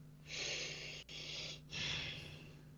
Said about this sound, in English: Sorry. Breathing. Yeah. Breathe on your own time.